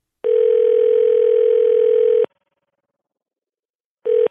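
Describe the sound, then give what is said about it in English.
A telephone dial tone while a call is placed to someone's father: a steady, clear electronic hum sounding for about two seconds, a silent gap, then the tone starting again. No voices. “We got to call my dad and tell him about this because it looks like they stole his idea.”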